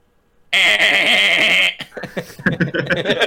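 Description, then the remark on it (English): A single loud, drawn-out wailing bird call, heard in the distance over a misty lake in Minnesota at daybreak, holds steady for about a second, rich and tonal, then breaks off as people start talking excitedly. “I want to fuck that bird.”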